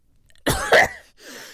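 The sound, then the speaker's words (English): A single loud sneeze bursts out suddenly, followed by a softer breathy exhale trailing off after a brief pause. “Sorry. Bless you.”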